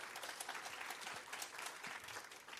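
A crowd at a Discovery Camp 20-year event claps steadily for a few seconds as someone walks, a dense, even wash of many hands applauding at once, moderately loud, with no voices standing out.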